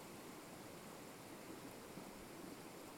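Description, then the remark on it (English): Flowing river water, a terribly abused stream, rushes in a steady, continuous wash with no breaks or voices, a soft, even hiss and burble heard on its own. “This water that we're looking at is terribly abused.”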